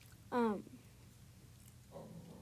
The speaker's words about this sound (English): So, sorry, my dog is barking. Okay, so my dog might bark.